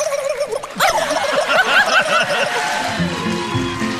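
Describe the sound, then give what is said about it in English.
An 11-year-old girl imitates a turkey gobble on America's Got Talent: a fast, warbling, throaty burst lasting about two seconds, loud, followed by a softer background of audience noise. “Turkey.”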